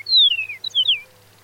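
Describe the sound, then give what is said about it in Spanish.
A Chihuahuan meadowlark sings a short phrase of clear, slurred whistles: a long descending note followed by a few quick, bright downward-sliding notes, with no talking and only a faint low hum beneath. “encontró que las diferencias entre sus cantos podrían evitar que los praderos chihuahuenses se reproduzcan con otras especies, y que los praderos orientales y occidentales están más relacionados entre sí que con las aves chihuahuenses.”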